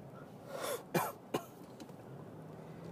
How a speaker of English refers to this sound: I'm nearly over my cold. Still got a heck of a cough going